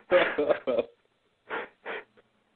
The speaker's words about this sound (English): Tough job for an actor to express breathing.